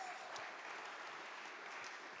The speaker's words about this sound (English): Give him a round of applause, come.